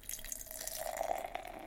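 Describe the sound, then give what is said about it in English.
A super dark beer of 8% alcohol by volume pours steadily into a glass, a continuous splashing gurgle with a faint ringing tone that rises slightly as the glass fills, forming a dark khaki-colored head with medium bubbles, with no talking. “And the pour.”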